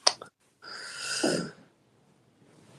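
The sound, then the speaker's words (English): A single sharp cough, then a brief pause and a longer, raspy throat-clearing rumble lasting about a second, followed by quiet, from a person just getting over an illness and bringing up phlegm. No talking. “Sorry, I'm coughing up a storm.”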